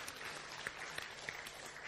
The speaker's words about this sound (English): So give them all a clap. Well done.